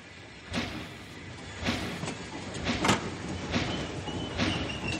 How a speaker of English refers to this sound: From breakfast, we rushed into our clothes and tore down the icy road in the glory of the blue-white, glistening Alpine morning. The train was just pulling out.